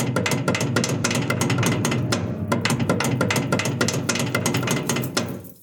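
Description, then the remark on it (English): A watertight door's wheel-handle latch being worked: a dense, steady run of rapid metallic clicks and clanks, like a ratcheting mechanism, continuing for several seconds before tapering off. “That was the unmistakable sound of a watertight door with wheel handle door latch being moved.”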